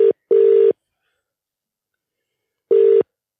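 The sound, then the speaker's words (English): An outgoing phone call's ringback tone purrs in a steady, moderately loud tone: a double ring pattern, a short pause, then another ring begins. There is no talking. “He's ringing.”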